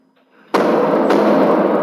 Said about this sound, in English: Bear bangers are what you're seeing in this video. They're noisy flares used in the wilderness to scare off bears.